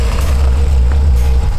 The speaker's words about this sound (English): After Ivan finds and destroys the device, he drives the caddy up the ramp into Betty.